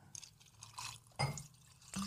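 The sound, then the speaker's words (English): Whiskey splashes and trickles into a glass, with a few sharper glugs and drips over a couple of seconds; fairly quiet, with no talking. “I'm pouring some.”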